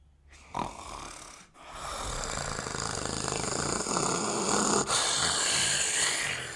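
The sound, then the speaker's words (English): A person imitates a man's long, rasping snore in his sleep, a rough sustained rattle through the nose and throat that starts after a brief sharp breath and continues loudly for several seconds. “Every single night, this guy snores.”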